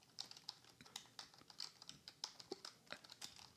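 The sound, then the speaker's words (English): Rapid, irregular clicking of computer keyboard keys, with a few heavier keystrokes mixed in. The typing is quiet, with no voices. “I'm sorry, I'm typing.”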